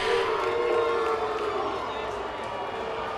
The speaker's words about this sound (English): The crowd's unhappy about it.